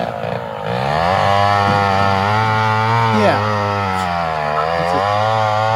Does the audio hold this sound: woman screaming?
no